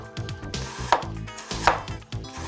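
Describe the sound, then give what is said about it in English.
A knife chops ginger and garlic on a cutting board for a Sichuan hot pot broth, with two sharp, distinct knocks against a steady backdrop of softer kitchen sounds, fairly clear, no talking. “We need to cut some ginger and garlic.”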